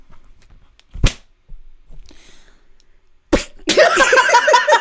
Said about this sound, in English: Okay, this is a book. That I'm just gonna smack.